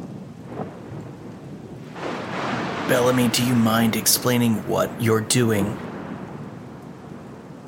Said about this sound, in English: A huge bolt of lightning just crashes across the sky and illuminates the sky.